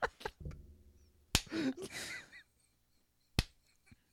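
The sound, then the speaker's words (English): Sharp, loud hand claps made in front of a microphone crack out one at a time with pauses between them, a few quick ones early and two isolated ones later, and a short breathy vocal sound in between. “I'm clapping in front of the mic so that they can hear me.”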